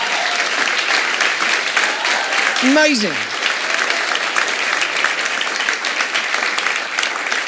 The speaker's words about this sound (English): So can you just stand? Any of these ministries, Growing Hope, CAP, Choices, XLP, the list goes on. Can we just give these guys a round of applause?